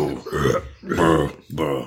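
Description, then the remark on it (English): Three drawn-out, guttural burp-like croaks in quick succession, loud, each about half a second long, apparently a human voice imitating burping. “They're just like, dude, are you okay? You keep burping.”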